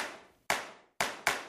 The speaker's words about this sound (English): Here's how to play Clap It Back. Your job is to clap the rhythm of everything the singer sings. If the singer sings, "Where's my wallet?" you clap.